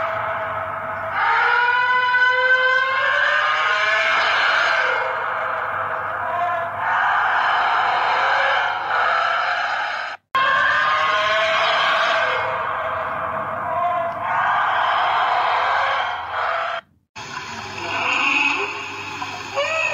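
Blue whale calls: long, loud, eerie moaning tones with rising and falling harmonic glides, sounding almost like wailing, continuing for about twenty seconds with two brief gaps and no talking.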